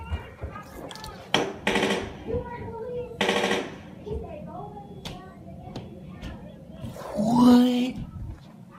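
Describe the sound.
Several sharp, loud gunshots burst out in quick succession in an apartment complex, followed by a few fainter cracks, with voices talking between the shots.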